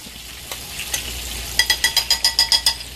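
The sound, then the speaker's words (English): Chicken frying in hot oil: a steady sizzling hiss with scattered crackles, then a quick run of about nine regular, sharp bursts of crackling pops. No one speaks. “So that's your hot oil mix right there.”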